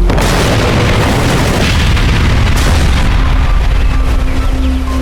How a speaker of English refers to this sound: I'm pretty sure it was an explosion.